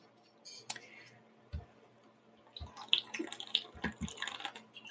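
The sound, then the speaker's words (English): Someone drinks water: a few wet sips and swallows, with small clicks and breathy sounds scattered irregularly over several seconds, quiet and with no talking. “Sorry, had to obnoxiously drink my water.”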